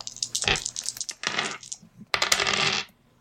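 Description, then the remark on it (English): A lot of dice clatter and rattle across a hard table in three quick bursts, loud, each a jumble of small sharp clicks that tumbles then settles, with no voices. “Hold on, I got to find a lot of dice.”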